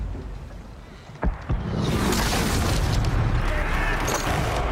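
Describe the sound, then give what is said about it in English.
Two heavy booms of cannon fire from British ships, one ship in pursuit of another, ring out one quickly after the other over a low rumbling background, followed by a sustained loud roar like wind and rushing sea. “There's another one that's in hot pursuit of the other. They're readying the cannons.”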